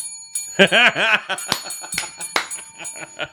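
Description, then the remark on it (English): A small bell rings, its thin metallic tone lingering under a string of sharp taps and handling clicks, with a brief voiced warble near the start. “I don't want to tape the bell.”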